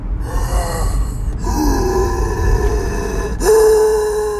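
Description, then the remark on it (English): A voice imitates labored, hoarse breathing: rasping, groaning breaths drawn out over a few seconds, fairly loud, with a sharper gasping intake near the end. “Anyway, so it sort of subsides and they just hear this really labored hoarse breathing.”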